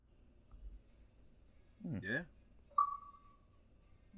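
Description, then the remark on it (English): A single electronic beep from an Xbox console as it turns off, a clean mid-pitched tone that starts sharply and fades over about a second, just after a brief vocal sound. “did you hear the beep? It's off now.”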